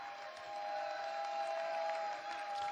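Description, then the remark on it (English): An audience at worship claps and shouts to the Lord together in a steady, continuous wash of applause and cheering, with a sustained tone humming underneath throughout. “I said, clap your hands, all you people. Shout to the Lord with a voice of triumph.”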